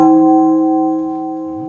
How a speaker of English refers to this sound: That was only one chime.